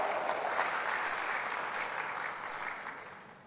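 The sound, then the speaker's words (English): A church audience claps for Jesus in a steady, dense wash of applause that carries evenly before gradually thinning toward the end, with no voices heard over it. “If you are clapping for Jesus, it's a good place to clap.”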